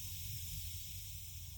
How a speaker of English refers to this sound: There's a hiss that starts, and gas is beginning to fill the room.